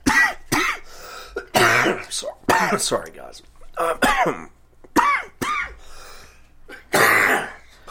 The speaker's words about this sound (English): coughing fit. Excuse me. Sorry.